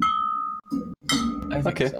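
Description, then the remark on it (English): Wine cups clink together in a toast, a clear ringing tone sustaining briefly before more bright, jangly taps and clatter follow, with some vocal sounds mixed in. “Bottoms up? Bottoms up. Cheers. It's not the wine glass. No, it's not. The wine cup.”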